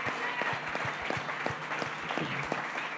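A live audience claps steadily for a few seconds, a dense, even wash of many hands with a few sharper individual claps standing out near the front.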